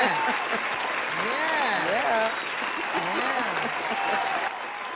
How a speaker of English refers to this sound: And I will give everyone an applause for supporting you, that they will keep on supporting you.